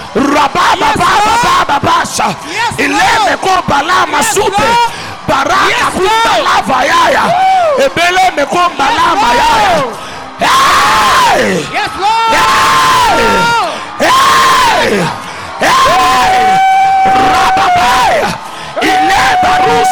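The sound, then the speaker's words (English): A large crowd screams, shouts and cheers loudly and continuously while jumping, with rising whoops and yells surging in waves, filling the whole stretch without pause. “You're jumping. You're screaming.”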